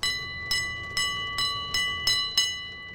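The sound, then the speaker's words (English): A noisy street on 47th Street in Borough Park, Brooklyn, where a bright metallic bell clangs steadily, about seven even strikes over a low rumble, its ringing tones hanging between hits. No one speaks. “Oh, what a noisy city, huh? We're in Brooklyn on 47th Street now, and that's Borough Park.”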